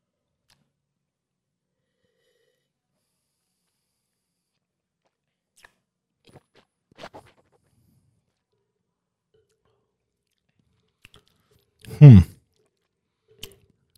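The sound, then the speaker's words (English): Near silence broken by a few soft mouth clicks, then a brief louder slurping first sip of wine with a low murmur near the end, followed by one more faint click. “I'm going to take my first sip.”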